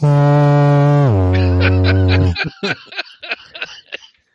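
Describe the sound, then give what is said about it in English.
A loud, low foghorn blast drops to an even deeper pitch and holds for about two seconds, then cuts off into a few seconds of bursty laughter. “So on the foghorn of doom, yeah, we've been talking for over an hour already.”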